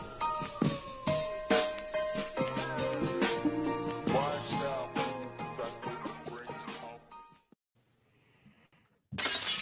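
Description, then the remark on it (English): Loud glass shattering: a sharp crash followed by several seconds of tinkling, clattering shards, then near silence before a sudden burst of noise at the very end. “Oh, you started with a hit in glass? What are you, Stone Cold Steve Austin?”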